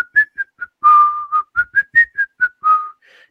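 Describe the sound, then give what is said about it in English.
A short, catchy jingle melody from a Culver's commercial whistled clearly, about a dozen bright notes in a bouncy rhythm with a couple of longer held tones, no talking. “And you go find Culver's commercials with the theme and the whistling.”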